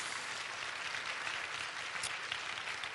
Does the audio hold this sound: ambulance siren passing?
no